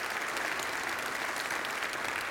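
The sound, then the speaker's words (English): Steady, dense clapping from a sizable audience, a sustained round of applause at an even level with no voices standing out, welcoming new members as they join. “Would you give them a good round of applause as they come into our life here?”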